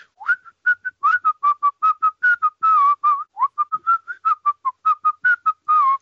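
A person whistles a lively song melody, a quick run of short, clear notes bouncing up and down in a steady rhythm, with no talking.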